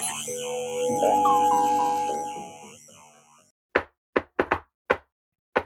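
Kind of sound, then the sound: impact, knocking on a door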